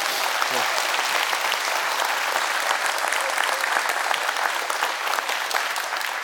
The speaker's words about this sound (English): But I'll tell them you clapped. I'll be like, no, I promise. It was a good clap.